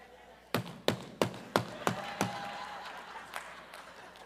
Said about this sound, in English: You knock. And you see them moving on the inside. So you knock again. And if you get there long enough and get frustrated, you do the palm.